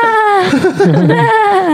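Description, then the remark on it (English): A person mimics dolphin chatter with a high, warbling squeal that bends up and down in pitch, breaking into rapid wobbly trills in the middle before settling back to a steady whistle, loud and unaccompanied. “Oh, that's what dolphins sound like in this dimension.”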